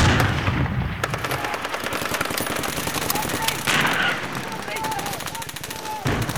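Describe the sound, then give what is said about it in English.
Rapid, sustained machine gun fire rattles continuously for several seconds, loud and relentless, with dense repeated bursts and some heavier booming shots mixed in. “Open fire!”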